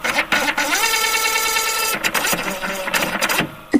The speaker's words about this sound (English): So let's press the button. All right. Printer, print the word of the week. Printing the word of the week.